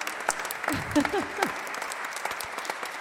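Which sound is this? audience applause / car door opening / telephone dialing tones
audience applause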